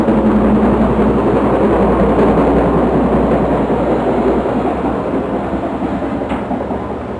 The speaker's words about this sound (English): Now you can hear that chopper. You hear it now? Real good and plain.